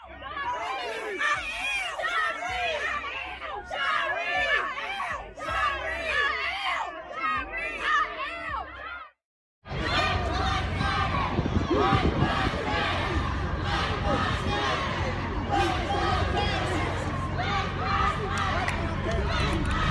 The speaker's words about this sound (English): Protesters chanted and shouted in demonstration against overuse of police power.